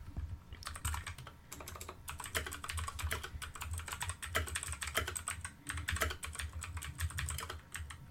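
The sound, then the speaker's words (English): Rapid, continuous typing on a big clicky mechanical computer keyboard while Googling how many movies were made in the 2010s, with sharp bright keystrokes in irregular bursts and brief pauses; no one speaks. “I have my keyboard with me. My big one. We can have clicky noises.”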